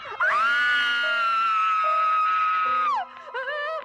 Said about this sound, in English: And, of course, she's going to scream again because a cabinet opens, and there's Lindsay's stuck up in there.